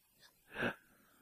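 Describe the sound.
A voice imitates Jonah gasping desperately for air in the belly of the fish: one short, wheezy, breathy intake, fairly strong, preceded by a faint breath, with no talking around it.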